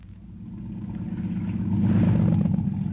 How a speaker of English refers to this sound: I shut off the engine. Shut her off.